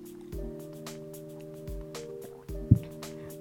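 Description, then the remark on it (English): Someone takes sips of water, with three soft, low gulping swallows spaced about a second apart and a small wet click near the end, over a faint steady background hum. “I even had to readjust my glasses and I'm gonna drink some water.”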